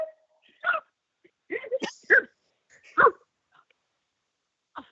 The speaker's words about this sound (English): Many people don't know this, but I actually speak dog. And he literally just said he's not a fan. Yeah, that doesn't surprise me. He's like, he's having to share everything with this little puppy who wants all the attention.